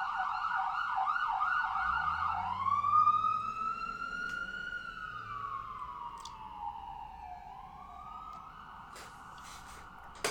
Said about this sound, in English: Let's wait a second, there's a siren.